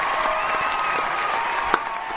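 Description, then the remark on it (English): Canned applause played for a guest on the show Meet the Movie Press: a steady, dense wash of clapping at an even level, with a single sharper clap standing out near the end. No one speaks. “We got some canned applause for you”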